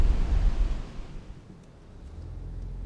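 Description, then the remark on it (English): Rough surf rumbles and washes against a rocky beach in Malibu, a steady low roar that swells and ebbs, with gusty wind mixed in and no voices. “And then you walk down here, and it's not a big, open, wide open, beautiful beach. You know, it's rocky and water's a little rough.”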